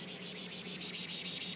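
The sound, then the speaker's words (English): A voice imitates a cicada with a steady, high-pitched buzzing drone that pulses rapidly and evenly for the whole moment, fairly soft, with no talking over it. “Oh my God, girl, you're really good at that. Pretty good, right? Little cicadas.”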